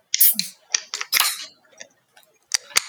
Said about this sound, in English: So grab your glass, grab your beer. Let's pull this one out and let's open it up.